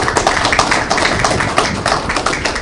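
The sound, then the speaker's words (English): A round of applause from a crowd: dense, steady clapping with many overlapping hand claps forming a crackling wash that holds at an even, fairly loud level throughout, with no voices. “Well, let's thank these gentlemen with a round of applause for help being here today.”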